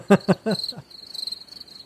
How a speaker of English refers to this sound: The crickets are cheering me on.